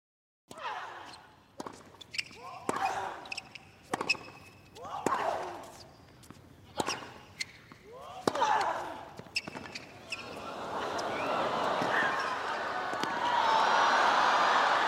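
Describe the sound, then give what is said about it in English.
A tennis rally of sharp racket strikes about every second, with a player's grunts on each hit, ends as Serena Williams wins the point that gives her an Open era record 23rd Grand Slam. A loud crowd roar and cheering swells and holds to the end. “That was the sound of tennis megastar Serena Williams winning her Open era record 23rd Grand Slam”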